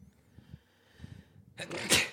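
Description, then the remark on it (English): A single loud, explosive sneeze bursts out after a few faint low murmurs, with a sharp breathy spray of spit trailing off. “Bless you. Yeah. Salute.”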